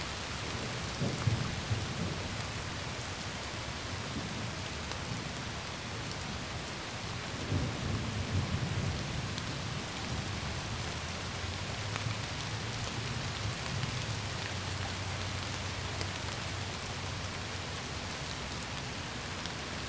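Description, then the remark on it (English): Steady, dense rainfall on a hot summer evening hisses throughout, with deep rolls of thunder swelling near the start and again midway before settling into a low rumble. No voices. “You've been listening to Rain on a Hot Summer Evening.”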